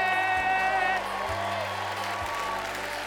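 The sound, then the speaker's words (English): A crowd at a comedy show applauds steadily as a comedian from New York City is brought to the stage, a dense wash of clapping with a few cheering voices and whoops rising over it at the start before settling into sustained applause. “Y'all put your hands together for”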